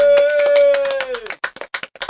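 Brief applause from a small group: quick claps under a sustained tonal whoop, then thinning out into a few separate, distinct claps at the end.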